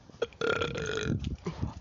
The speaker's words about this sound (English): 1 second, I need to burp.